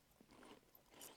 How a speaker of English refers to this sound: The first thing, if you didn't know what this was, and you took. The first bite and the crunch would throw you off. You're like, what is that?